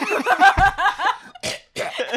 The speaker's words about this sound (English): I'm coughing.